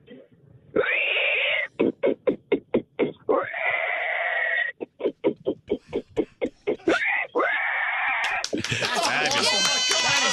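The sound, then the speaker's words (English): A person loudly imitates a pig, alternating long drawn-out squeals with rapid bursts of short grunts, ending in a high, shrill squeal, with no other talk. “I can sound exactly like a pig. I make very authentic pig noises.”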